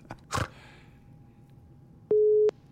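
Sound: phone call ringing tone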